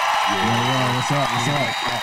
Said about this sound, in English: Man, stop clapping. I'm happy. Why are you clapping? He gave you a fitting intro this time. I'm clapping. Yeah, but you clapping for yourself. No, I'm clapping for you. No, you're not. You're clapping for yourself.